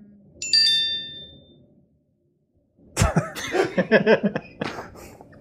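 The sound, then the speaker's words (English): A brief, bright phone notification ding rings out near the start in a room with many phones, fading over a second. After a short silence, someone coughs and laughs loudly. “There's too many phones in this room.”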